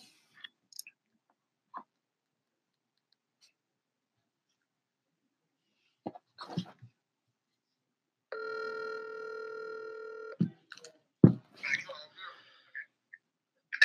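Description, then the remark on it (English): A few scattered clicks and taps as a phone call is placed, then a single steady electronic telephone ring lasting about two seconds, followed by more clattering handling noises, moderately loud with no talking. “So with that, I think it's only fitting if we get the champion on the phone.”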